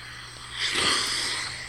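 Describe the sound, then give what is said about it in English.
A single deep sniff, a rushed, breathy inhale through the nose taken before answering a question, swelling and fading over about a second, with no talking, over a faint steady low hum. “Folks, when he does that sniff, you should know as his friend, whenever I ask”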